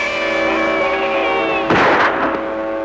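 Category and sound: sound effect, gunshot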